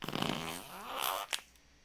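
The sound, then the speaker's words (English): A drawn-out fart with a buzzy, wavering pitch lasts just over a second, then ends in a short, sharp squelchy pop. No one speaks. “I'm afraid it was another fart”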